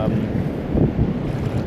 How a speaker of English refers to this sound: we were just out there talking, enjoying, the sounds of the waves. Oh, here, I think that's a nice kind of big one, kind of.